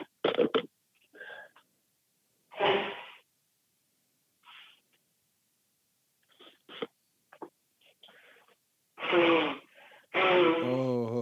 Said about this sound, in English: Oh. Blowing his nose.